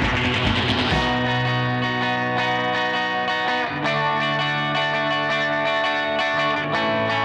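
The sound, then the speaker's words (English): A loud, heavily distorted guitar rings out in sustained chords, swirling with a sweeping flanger effect at first and washed in reverb, with no talking. “Heavy on the flanger. Yeah. Heavy on the dirt.”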